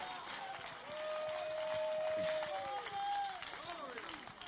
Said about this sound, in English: Clap your hands and give God a shout of praise. I can't hear you. Clap your hands and give him a shout of praise.